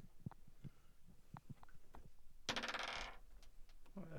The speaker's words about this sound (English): This time, roll 2 dice and use the lower, because flying makes you a bit more noticeable. You can just roll that 1 die twice.